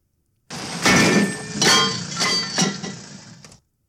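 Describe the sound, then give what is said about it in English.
A heavy brass lawn jockey statue is tipped over by the pizza guy, toppling with a loud metallic crash, then clattering and banging several more times as it settles, with bright ringing overtones. Loud, with no voices. “It is the brass jockey getting tipping. Well over.”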